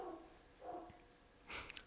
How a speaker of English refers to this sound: I'm about to kill that damn dog. Yeah, that dog is pissing me off.